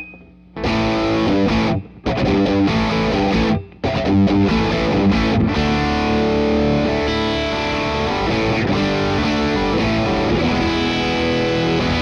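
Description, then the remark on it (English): Heavily distorted electric guitar, a Whitfield Telecaster run through a DS1 distortion into an MXR Eddie Van Halen Phase 90 phaser, playing loud sustained chords and riffs, with two quick breaks early on before ringing out continuously; no voices. “And right now, I'm running the DS1 into the phase 90. Here's my distortion sound.”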